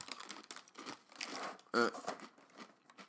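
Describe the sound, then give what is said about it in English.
Crisp, crackly crunching from chewing a snack treat taken from a box, a steady run of dry brittle bursts, with a brief hummed murmur about halfway through. “I don't know if you can hear that crunch, but it is an authentically beautiful crunch.”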